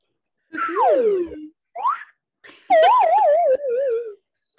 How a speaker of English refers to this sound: I didn't find those, but I found my slide whistle.